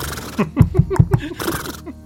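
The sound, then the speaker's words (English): A man's voice imitates a horse, letting out a quick run of rhythmic, breathy whinnying and snorting bursts. The sounds are close and moderately loud, with no other talking. “Can you say that in horse?”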